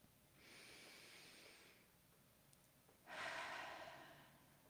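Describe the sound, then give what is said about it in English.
A slow, deep breath drawn in, a short pause, then a fuller exhale, both soft and airy, with nothing else around them. “Number 24, take a deep breath.”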